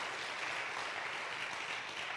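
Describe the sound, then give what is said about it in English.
A church audience claps steadily for the Lord during a sermon, a dense, continuous wash of many hands applauding at even loudness for a couple of seconds, with no voices standing out. “It's okay to clap. You can clap.”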